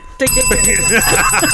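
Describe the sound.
A bright, ringing timer alarm, signalling that the time to answer has run out, cuts in abruptly and keeps sounding steadily and loudly for over a second, with a voice-like warble running over it.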